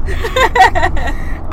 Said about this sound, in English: So please bear with us as you hear that low humming in the background. That's the roads, guys.